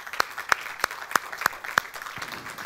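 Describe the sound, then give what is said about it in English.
An audience applauds with steady, rhythmic claps, six sharp and evenly spaced beats, before the clapping thins out into softer, scattered noise. Nobody speaks. “Yeah, if you're going to applaud, wow.”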